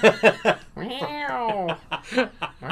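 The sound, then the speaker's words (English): A person vocally imitates a TIE fighter screaming past, a sustained wavering, cat-like screech lasting about a second, with short bursts of laughter just before and after. “I would try and mimic the sound, but you guys are just going to tell me I sound like a fucking cat again.”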